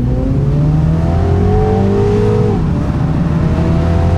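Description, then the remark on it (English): A petrol car engine accelerates from about 20 mph in its sportiest sport mode with automatic gear changes, its tone climbing in pitch as revs rise, then dropping briefly at a gear change before building again; a fairly muted, continuous drone heard from inside the car, with next to no exhaust noise. “There's a bit of engine noise, but I can't say it's particularly exciting”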